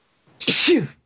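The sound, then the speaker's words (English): A single loud sneeze bursts out suddenly with a sharp breathy blast and a voiced exclamation, then fades quickly into silence. “Bless you.”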